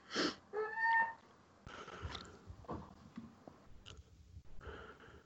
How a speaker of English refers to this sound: If you hear me breathing into the mic, I apologize. I'm going to try to keep my mic muted when I'm not talking because obviously I'm having trouble breathing. I don't have corona.